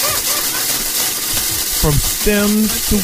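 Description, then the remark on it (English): Breaking up weed with a CD: a steady, dry crackling and scraping runs throughout, joined near the end by a few brief squeaky, honk-like tones. “This is how you break your weed up, man.”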